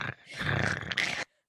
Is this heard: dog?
yes